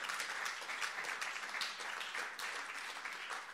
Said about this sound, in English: please do give him a big round of applause.